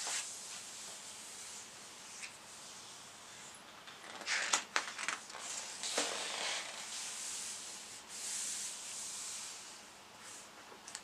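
Soft, papery swishes and rustles as pages of a photo book are turned, a few brief flurries rising over a steady faint hiss, with no voices.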